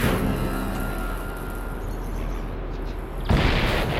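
A loud, rumbling explosion effect roars continuously with heavy low-end noise, then a sharper second blast bursts in near the end, louder and brighter than the rumble before it.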